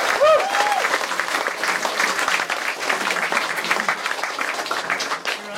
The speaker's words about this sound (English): Give yourselves a massive round of applause, Christchurch. Awesome.